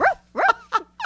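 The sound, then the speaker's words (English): A voice imitates a dog, letting out four quick, loud, sharp barks in a rapid rhythm with short gaps between them. “You see, it's just puppy love. Bark on, baby. Bark on. Bark on.”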